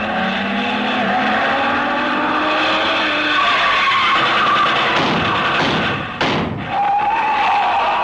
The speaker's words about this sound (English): Speeding toward the same destination is another car. Leave us see who is in it.